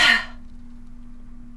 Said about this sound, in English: If you feel like there's an extra bit of oomph behind things, take another inhale in. And feel like you're forcing it out with the lion's breath.